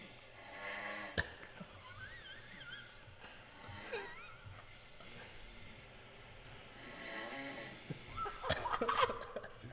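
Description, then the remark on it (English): A man snores in his room with the door closed, recorded on video through the wall: muffled, low-level snoring with rough snorting breaths and a wheezy hiss, dulled, with a louder snort near the end. “I think I took a video.”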